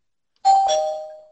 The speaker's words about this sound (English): Ding dong.